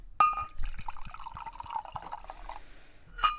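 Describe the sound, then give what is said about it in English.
Wine trickles into a glass for a little half glass with a steady gurgling pour for a couple of seconds. Light clinks of glass come at the start and end, and it is fairly quiet. “I need like a little half glass. There you go.”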